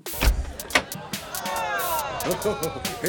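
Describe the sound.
A couple of sharp clunks, then a sliding door rolls open along its track with a long, rising mechanical whir, fairly loud, with a voice faintly underneath near the end.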